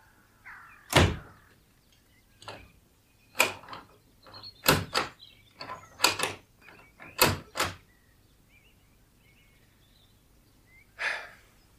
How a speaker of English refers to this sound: How did the cellar door come open? I couldn't have bolted it properly last night. Right. It's shut now, and it's going to stay shut.